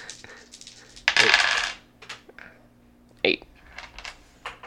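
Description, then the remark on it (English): Dice are rolled twice for an advantage roll in a tabletop game, clattering across a hard tabletop in a bright, sustained rattle lasting under a second, followed by a few scattered clicks and a sharp tap as they settle, with faint talk in the background. “Why do you get to roll twice? Because it was advantage.”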